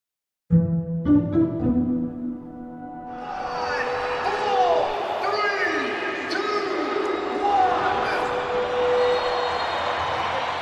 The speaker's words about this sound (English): A crowd waving Palestinian flags erupts into cheers. A sight seen at massive protests around the world, now in the stands of a football stadium. Sunday was the first football match Palestine played in the AFC Asian Cup, going on now in Qatar.